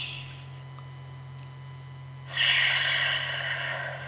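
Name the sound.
deep breath in nose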